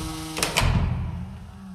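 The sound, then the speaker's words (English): A door is shut and locked with two quick sharp clicks of a latch, followed by a low, heavy thud that fades into a steady background hum. “Lock the door behind me”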